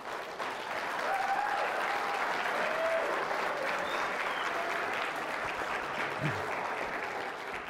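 Sustained applause from an audience, a dense, steady wash of many hands clapping at even loudness for several seconds, with a few faint whistles or cheers mixed in.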